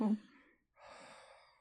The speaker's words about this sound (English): Oh. I'm breathing down the microphone.